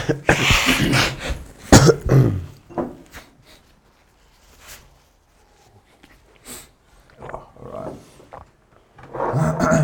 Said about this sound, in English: I'm going to quickly blow my nose. I'm going to edit this part out.